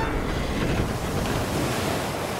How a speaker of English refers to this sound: The wind was blowing harder, whistling through the outer catwalk and slipping along the glass. From his vantage in the lighthouse, he could see the trees and tall grass in the eastern field bend and twist in the gale.